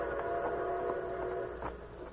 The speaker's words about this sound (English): In a wooded grove near the railroad tracks, 4 men with their faces masked by bandanas waited tensely as they heard the distant whistle of an approaching train.